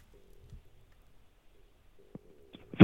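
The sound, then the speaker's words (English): A phone clatters as it is dropped, with a couple of sharp knocks followed by a louder thud and rattle at the end, over a faint steady electronic tone. “I dropped my phone by the time you started talking.”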